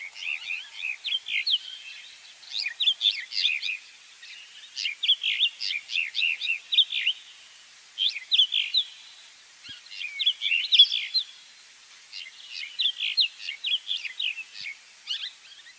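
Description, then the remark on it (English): Bursts of bright, scratchy bird song and chirping calls repeat in quick phrases with brief pauses, a mountain wheatear, a species living in the Namib Desert and surrounding grasslands, singing clearly with no one talking. “The mountain weed eater, for example, lives in the Namib Desert and the surrounding grasslands.”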